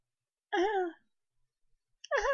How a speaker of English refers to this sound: So that's me coughing like a little bit. Like a little fucking beep, beep, beep.